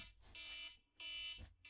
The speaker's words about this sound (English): Were you right at the end, or did you cut it short because the timer went off?